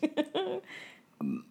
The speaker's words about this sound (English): excuse me, I'm burping.